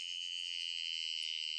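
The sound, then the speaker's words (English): A steady, high-pitched electric buzz from the motor of a hair-pulling shaver that has three speeds, droning without a break for the whole moment, with no voices over it. “I know that outboard slog and motor sound.”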